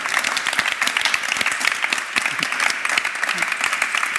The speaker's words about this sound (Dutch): Mag ik even nog een applaus